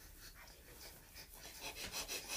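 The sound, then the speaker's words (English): A dog pants heavily and rapidly, a steady run of raspy, breathy huffs with no talking over it. “If you hear some heavy breathing, forgive him.”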